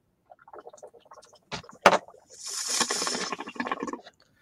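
A Turkish tobacco pipe bubbling in uneven bursts, starting with a few sharp pops and then a steady, hissy stretch of rapid bubbling that trails off into scattered little blips.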